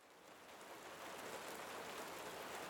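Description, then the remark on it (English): Steady, gentle rain patters on a barn roof, a soft continuous hiss of countless drops with no voices, holding an even, fairly quiet level throughout. “There we were, standing in a barn on our mats, eyes closed, rain falling softly on the roof above.”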